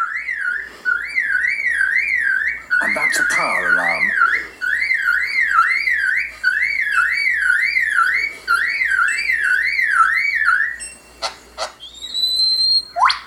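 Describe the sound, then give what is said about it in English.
A bird imitates a camera motor drive: a loud, steady whirring tone that wavers up and down in quick regular cycles, broken by sharp clicky bursts and ending in quick rising chirps. “Now a camera with a motor drive.”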